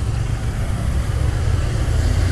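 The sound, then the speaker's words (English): Loud, steady low rumble of large trucks driving past on a road, a continuous engine drone with broad traffic hiss over it and no speech. “Oh wow, everyone's driving these monster trucks.”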